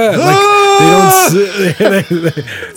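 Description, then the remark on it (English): A real lamb screams in one long, loud, quavering cry with a strangely human tone, then lets out a quick string of shorter, choppier bleats; a sound effect cut into a film clip. “they intercut that sound effect of a real lamb scream into that clip”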